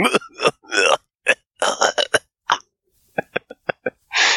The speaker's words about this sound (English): Well, the person next door is obviously smoking some good shit because they're coughing like a motherfucker.